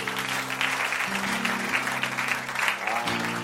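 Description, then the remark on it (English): An audience at a church service breaks into sustained applause, a dense wash of many hands clapping steadily and loudly for several seconds, with a low organ or keyboard chord sounding underneath. “A round of applause.”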